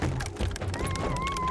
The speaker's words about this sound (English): sounds like a whole bunch of these wolves have just smashed into this door, and you hear a whole bunch of scraping.